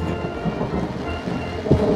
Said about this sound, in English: And now it's raining. Oh, my terrace plot is rained out for the day, I guess. We're on a rain delay. Game called on account of rain.